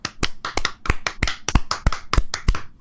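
A string of sharp hand claps, about eight or nine loud ones in a steady, slightly uneven rhythm, with a few softer claps in between and no voices.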